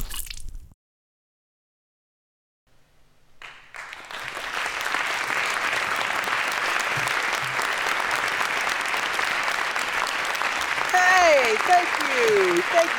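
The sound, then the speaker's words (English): After a brief silence, the live audience of the show For Screen and Country breaks into loud, sustained applause with dense clapping and cheering that swells and holds steady, with a few higher whoops and whistles rising near the end. “Oh, what a crowd. So great to hear you all.”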